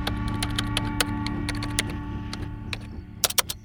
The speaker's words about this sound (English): So she continues typing.